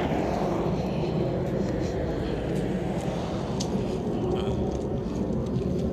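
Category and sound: vehicle, airplane passing overhead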